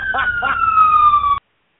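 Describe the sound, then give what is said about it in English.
A buzzer sound effect: one loud, steady electronic tone that sags slightly in pitch, holds for about a second and a half, then cuts off abruptly. Two short vocal bursts overlap its start. “Put the buzzer meter on me.”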